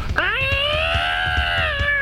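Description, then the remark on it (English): A parrot imitates a yowling cat: one loud, drawn-out wail that swoops upward and then holds steady for nearly two seconds, with soft rhythmic low thumps pulsing underneath. “Favorite bird sound is the one that sounds like a cat having sex.”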